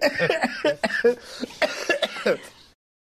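A run of loud coughs in short bursts, about five or six harsh hacks over a few seconds with throat-clearing rasps between them, then silence at the end.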